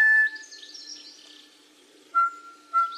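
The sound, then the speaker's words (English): A bird calls, the traditional morning bird call of the radio programme Morning Report, with a clear, sustained whistle that gives way to soft high warbling, then two short, bright whistled notes close together near the end. No one speaks. “In 1974, Robert Taylor moved to mornings and started the tradition of the morning bird call we are celebrating today.”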